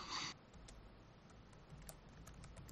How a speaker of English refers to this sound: Someone's typing. Who's typing? I'm trying to figure out where Swope Park is. He's trying to find your keyboard. It's a very loud keyboard.